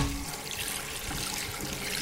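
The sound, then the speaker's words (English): Water runs steadily from a tap into a sink, a continuous close splashing hiss as hands are washed beneath the stream, with no voices. “Wash your hands, of course, but this is easier said than done when you live in a place where water is hard to come by and when it's not always flowing from a tap or faucet.”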